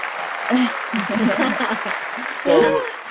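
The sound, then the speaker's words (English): A canned applause sound effect, played by pushing an applause button: a steady wash of crowd clapping lasting about three seconds, with voices calling out or talking over it, swelling again near the end. “This is when I push the applause button.”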